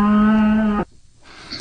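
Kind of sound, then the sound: animal, cow mooing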